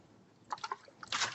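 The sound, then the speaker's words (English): A sip and swallow of water: a few quick wet gulping sounds, then a short breathy exhale after drinking, all quiet with no talking. “Oh, water is tasty.”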